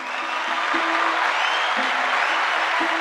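An audience applauds the person who sent in the week's big question, with steady, dense clapping that holds at an even loudness throughout, without any speech over it.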